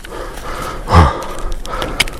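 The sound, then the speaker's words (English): A person huffs and puffs imitating a fire-breathing dragon trying to breathe fire, one strong breathy blast followed by softer panting exhales, with no words. “This is a fire-breathing dragon. Watch this.”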